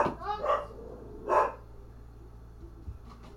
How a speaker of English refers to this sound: What the fuck? You hear that shit? I hear your dogs, yeah.